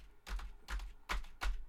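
Four heavy, evenly paced keystrokes on a computer keyboard, each a sharp clack with a dull thump, deliberate with short pauses between and no voices.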